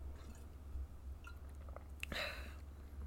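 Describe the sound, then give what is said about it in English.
A few quiet, wet slurping sounds from someone taking a sip of coffee with Baileys from a mug, over a low steady hum, with no talking. “I'm taking a sip of my coffee and Bailey's.”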